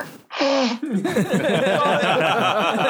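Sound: blowing nose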